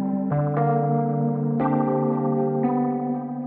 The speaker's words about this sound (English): It's just very similar keyboard sound.